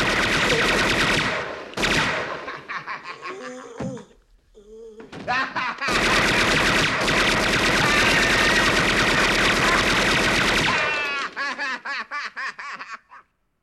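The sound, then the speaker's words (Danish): Loud, sustained bursts of rapid movie-style machine-gun fire, broken by brief pauses, then a long continuous volley that stutters into separate shots before stopping. “I'm gonna give you, to the count of 10, to get your ugly, yellow, no good keister off my property before I pump your guts full of lead.”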